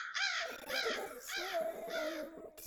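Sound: crow cawing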